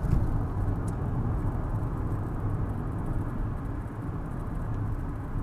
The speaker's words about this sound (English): Yes, I'm driving. That's why the sound quality is poor. I'm overtaking a truck on a country road. That's what that's all about.